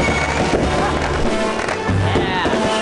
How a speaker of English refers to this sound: Yay, fireworks.